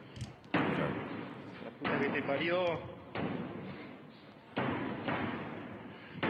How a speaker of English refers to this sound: Part of me wants to say it's the wind, but the door is jerking too much, you know? Yeah, there's too much force on the inside.